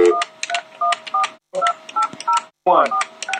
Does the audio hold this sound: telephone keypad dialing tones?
yes